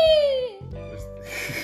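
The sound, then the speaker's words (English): A voice imitates a girl's disgusted scream at getting ink on her hand: a loud, high-pitched squeal that slides downward in pitch for about half a second, then trails into quieter, lower vocal sounds. “She really made that scream.”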